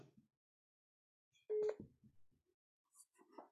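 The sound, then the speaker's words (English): A loud, brief electronic tone from a phone left switched on sounds once, a steady beep cutting in mid-clip, surrounded by faint muffled voices and shuffling before and after. “I had the phone on.”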